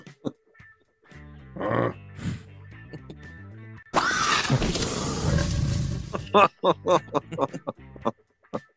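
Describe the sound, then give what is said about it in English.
A velociraptor grunting sound effect: a series of guttural grunts and snorts, then a loud, raspy roar lasting about two seconds, trailing off into short, sharp chirping squawks. “Just play the Velociraptor one to get it over with. What the fuck was that grunting?”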